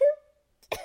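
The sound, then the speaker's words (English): A single sneeze: a brief voiced, rising intake, a short pause, then one sharp, loud, noisy burst. No talking is heard. “And I'm gonna sneeze.”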